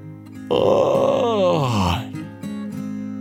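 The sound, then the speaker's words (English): A narrator gives one big, drawn-out yawn for the story character Fernando, loud, rising into an open vocal stretch and then sliding down in pitch before trailing off, with soft steady music underneath. “Fernando yawned a big”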